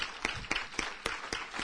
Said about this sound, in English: For after all, we are clapping to him.